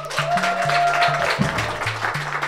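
A crowd applauds steadily for a couple of seconds, a dense wash of many hands clapping at once, with a low, stepping musical tone running underneath.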